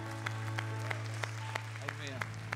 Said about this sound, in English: Amen. Let's give the Lord a hand clap of praise today.